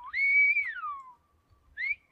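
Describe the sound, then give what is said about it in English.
A loud, piercing phrase in Silbo whistled language meaning coffee, on a tiny remote island: a tone rises, holds high, then glides down, followed by a short pause and a second rising whistle. No voices. “Oh, there's a whistle for coffee, huh?”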